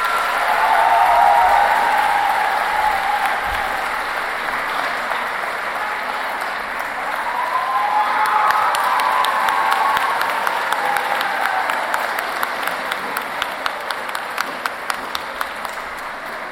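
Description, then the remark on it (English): A large crowd at the Pratt Library in Baltimore bursts into sustained applause with scattered cheers and whoops, welcoming best-selling author James Patterson; the clapping swells again midway before thinning into individual claps toward the end. “So please, let's welcome to Baltimore and the Pratt Library and offer a wholehearted thank you to our special guest, best-selling author James Patterson.”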